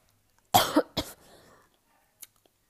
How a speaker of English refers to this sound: Okay, I've been coughing for a while. My voice is kind of sore.